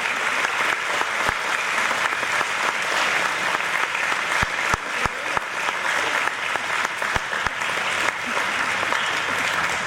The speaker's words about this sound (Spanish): Y por eso, si todas las mamás que estén aquí en el salón, si por favor se puede poner de pie, porque queremos darle un fuerte aplauso. Sí. Un fuerte aplauso.